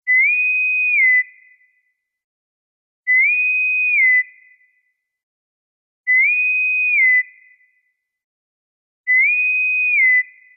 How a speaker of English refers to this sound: Let's blow the bosun's whistle and get ready for some news.